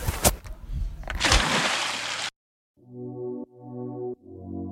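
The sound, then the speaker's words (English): Loud water splashing and sloshing as a boy who cannot swim falls into the sea, churning for about two seconds, then cutting off abruptly; after a brief silence, a few sustained musical chords play. “He fell in the water.”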